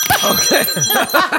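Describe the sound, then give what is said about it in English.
A guest's phone rings with a bright, bell-like ringtone, its chiming tones sustained while a fast warbling melodic pattern repeats steadily and loudly throughout. “that's not your phone. That's the guest's phone.”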